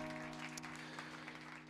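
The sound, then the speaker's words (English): A church audience stands and claps hands in praise to the Lord, a dense, steady wash of many overlapping claps, with a low sustained hum underneath. “Can you stand up and give the Lord a hand clap of praise if you want to do it?”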